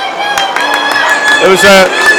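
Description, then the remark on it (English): A football crowd at a women's match reacts to a foul and a free kick with a sustained, dense roar of jeers and shouts, steady throughout, with louder individual yells swelling briefly past the midpoint. “Listen to the crowd think of that.”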